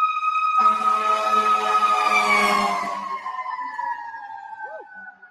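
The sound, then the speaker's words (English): A fire engine goes by with a loud blaring horn and rumbling engine, then its wailing siren tone fades away over a few seconds. “And I'm sorry, there's a fire engine coming, so hold on 1 second. Don't let this fire engine go by.”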